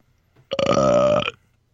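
A single loud, drawn-out burp rumbles for nearly a second, with no talking around it and quiet before and after.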